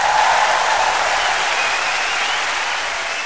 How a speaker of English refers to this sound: Now, hold your applause, please. Hold your applause.